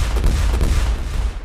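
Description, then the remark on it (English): Small explosive charges planted around a spaceship's cargo door go off in rapid succession, blowing the door off: a string of loud, sharp booms over a deep, rumbling low end that stays heavy throughout, with no voices. “The charges detonated in sequence and the door flew off behind us.”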